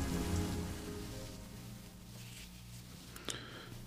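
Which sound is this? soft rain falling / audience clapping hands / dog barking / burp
soft rain falling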